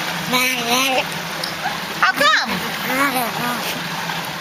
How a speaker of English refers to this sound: This episode's audio clip is of a talking sea otter. Here we go.